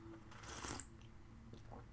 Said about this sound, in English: I'm going to sip my tea real quick.